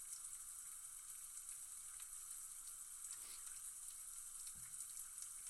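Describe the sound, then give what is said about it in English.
Kolsch beer pours steadily into a glass with a continuous splashing, fizzing hiss, fairly even throughout, with a couple of brief clinks or bumps along the way and no talking. “Excited to see what it looks like when I pour it out here.”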